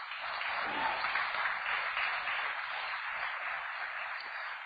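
Steady audience applause, requested as a thunderous round for a departing crew member, a dense wash of many hands clapping at an even, sustained loudness for several seconds with no voices standing out.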